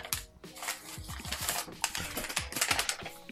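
Dense, irregular crackling and rustling as paper is crumpled and handled while a package containing a note is opened, with sharp little snaps scattered through a few seconds of steady activity and no voices.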